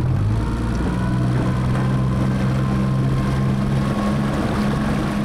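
A small boat's outboard motor runs loudly and steadily, a low droning engine hum with a buzzing whine layered on top, holding the same pitch throughout with no voices.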